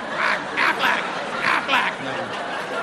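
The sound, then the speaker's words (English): A man's voice imitates a duck, like the Aflac duck, giving about five nasal, honking quacks in quick uneven bursts, fairly loud, with no other talking. “I spent the afternoon walking around the house quacking.”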